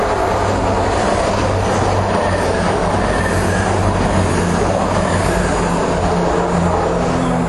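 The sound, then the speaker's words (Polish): A train rolls past without stopping, a loud continuous rumble of wheels and rail noise with steady low hum and rattling clatter filling the whole stretch, no voices, on a very hot April day. “To był pociąg, który tylko przejeżdżał, nie zatrzymywał się, a ja nadal sobie czekam na mój pociąg.”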